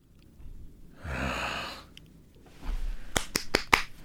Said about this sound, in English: Then you have to do the clap. Yeah, we've all seen Pee-wee's Big Adventure. We know how Texas works.